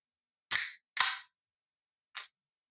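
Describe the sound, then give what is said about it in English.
A soda can is cracked open: a sharp metallic snap with a fizzing hiss, a second hissing burst right after, then a short, softer pop, with no talking. “Actually, I might not start eating it, but I am going to open my Peppis.”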